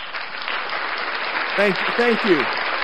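A canned burst of crowd applause plays steadily from a sound box to wrap up a show, dense clapping with a few cheering whoops rising over it near the end.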